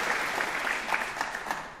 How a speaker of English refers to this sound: Hallelujah. Praise the Lord. The Lord deserves a big, you know, clap of hands. Praise the Lord.